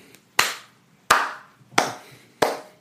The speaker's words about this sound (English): Let's get a slow clap.